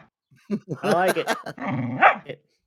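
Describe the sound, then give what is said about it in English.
A person's voice imitates a dog, barking back at a pet dog, producing a rough growl that rises into a few bark-like yelps, fairly loud, lasting about two seconds. “He wants to hear you bark back at him.”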